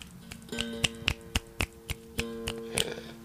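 A scattering of finger snaps from an audience, crisp and sharp, popping at an irregular pace of roughly three per second over a low steady hum, used in place of clapping.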